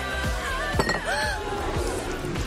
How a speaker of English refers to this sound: Spilled your drink? Quick!